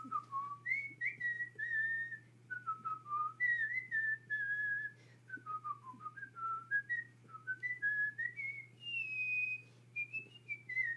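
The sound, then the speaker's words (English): People whistle a wandering tune for about eleven seconds in short connected phrases that rise and fall, fairly clear, over a steady low hum, with no talking. “These people whistled and everything.”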